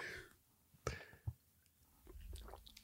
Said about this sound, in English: You're not going to hear a lot of glugs. I'm just going to do a little sip.